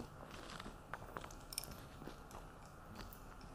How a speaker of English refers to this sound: You can take your chocolate chips and squish your banana on there and picks up a chocolate chip, right? That's the beauty. That's why you really don't have to melt it. And the crunch of the chocolate chips is really good.